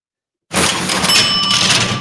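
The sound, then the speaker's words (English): A cash-register money bell sound effect rings out suddenly after silence, a bright metallic ding with a drawer-like clatter that sustains loudly to the end, with no talking. “Jay, hit that money bell.”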